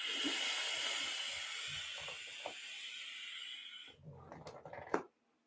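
A long, steady airy hiss with faint crackling as someone draws hard on a vape device, inhaling vapour directly into the lungs, for about four seconds, followed by a short burst of breathy, clicky sounds as the draw ends.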